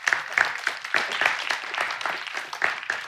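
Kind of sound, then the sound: crowd, audience applause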